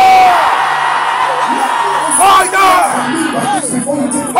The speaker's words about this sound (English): With a loud voice, can you scream fire? Fire.